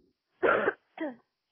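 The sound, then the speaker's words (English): A harsh cough from a sick person bursts out, followed a moment later by a shorter, rougher cough with a voiced edge, then quiet. No speech accompanies the sounds. “Sorry I keep coughing, Lee Stuck audience.”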